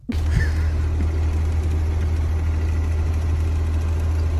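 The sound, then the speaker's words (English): A car engine idles steadily, a deep continuous rumble with a constant drone that starts abruptly and holds at an even level throughout, with no voices. “So they ride in the car.”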